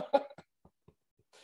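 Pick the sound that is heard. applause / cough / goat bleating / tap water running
cough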